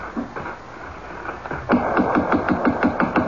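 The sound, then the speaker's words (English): Rapid, steady pounding on the door of a closed five-story house with drawn shades: a quick run of about ten loud knocks in an even rhythm, starting after a brief quiet moment and continuing to the end. “Well, knock.”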